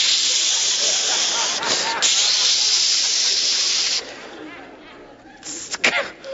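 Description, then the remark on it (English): A voice imitates the hiss of an aerosol can of Raid bug spray, giving a long, loud, steady spray for about four seconds, then softer, shorter bursts with a few breathy puffs at the end. “I was going to start running through the jungle in a loincloth and a couple of cans of Raid and just kill all the bugs I could.”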